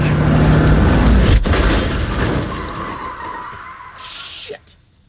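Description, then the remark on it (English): A car that is not slowing down skids loudly and out of control, a harsh, steady roar of tires and engine that grinds on for several seconds before cutting off with a sharp crack and sudden quiet. “It's not slowing down. Why isn't it... Ace, get out of the goddamn car!”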